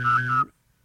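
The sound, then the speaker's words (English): A professional whistler whistles an imitation of a vibrating cell phone: one short, buzzy, steady low drone lasting about half a second with a slight warble, then it cuts off into silence. “And I can do also a vibrating cell phone.”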